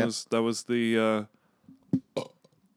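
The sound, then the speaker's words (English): Three loud burps come in quick succession, the last one long and drawn out, followed by a stretch of quiet with a few faint clicks and small vocal sounds. “Yeah, it's going to be, get ready for a lot of burps.”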